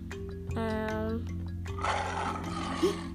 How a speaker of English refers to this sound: Me da miedo. It's scary. Miedo. ¿Qué animal es? What animal is it? Lion. León.